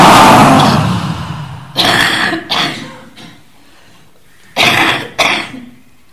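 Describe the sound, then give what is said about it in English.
During a guided breathing exercise, a group raises shoulders to ears and lets out forceful, breathy "ha" exhalations: one long opening burst, then two pairs of sharp, loud bursts separated by short silences, with no talking. “Really give it all you have. Breathing out with a ha.”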